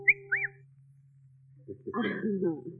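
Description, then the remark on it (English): A quick two-note wolf whistle admiring a woman's dress, rising and then swooping, sounds clear before a voice starts talking. “Well, then you should have made the whistle shorter, like this.”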